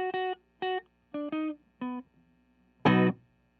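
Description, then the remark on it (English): Guitar run through a chain of 100 effects pedals all turned on: five short, buzzy, distorted stabs in a steady rhythm, then one louder, denser burst at the end, with a faint hum between notes and no talking. “I mean, it just sounded like fucking white noise.”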